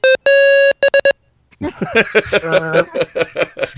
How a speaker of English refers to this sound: It's the flatlining sound.